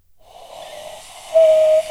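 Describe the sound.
A breathy rush of air builds for about a second, then breaks into a steady, hollow hooting whistle, a cupped-hand bird call held briefly before cutting off. Nobody speaks.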